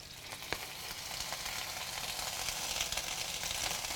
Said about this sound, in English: I'm hearing something happen. I wonder how it's all doing. Doesn't everybody want to know? Sizzling? Yes. It's sizzling.